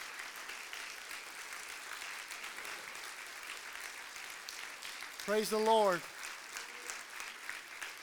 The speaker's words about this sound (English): Praise the Lord. Praise the Lord. Yeah, go ahead and give him a hand clap of praise. Amen.